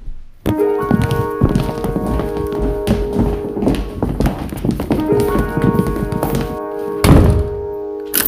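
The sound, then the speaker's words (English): Loud wooden thunks and clatter as heavy weapons are dropped into a broom closet, then the closet door is shut firmly and locked, with steady music playing underneath throughout. “Let's put the weapons in the broom closet and lock the door.”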